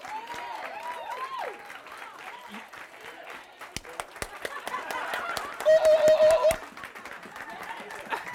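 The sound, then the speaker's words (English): An audience claps steadily for several seconds, sharp individual claps standing out over a crowd murmur, with voices calling out at the start and a louder swell of applause near the end. “I clap for myself.”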